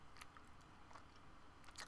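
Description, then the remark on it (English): Someone chews a fruit snack, with a few crisp, moist bites spaced roughly a second apart over a soft, quiet background and no talking. “Can you hear the chewing, though?”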